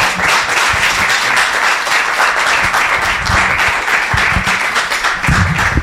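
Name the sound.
audience applause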